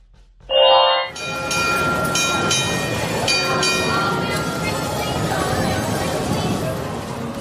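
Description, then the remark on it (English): The Red Car Trolley at Disney's California Adventure rolls along its rails on Buena Vista Street with a steady, loud rumble and a few metallic clacks, opening with a short, bright tonal ring before the running noise takes over. “Friends, we actually had a busy weekend at the park because the red car trolley came back to Disney's California Adventure, which is going to add that nice kinetic energy that will be going up and down Buena Vista Street”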